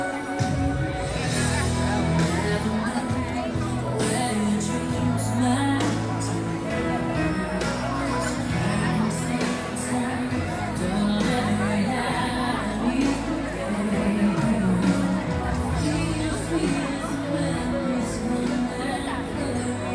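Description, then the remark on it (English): Dense crowd chatter at a fireworks show while someone pushes against the flow of the crowd, a steady wash of many overlapping voices all around, with no single speaker standing out and no pauses throughout. “Fight the crowd.”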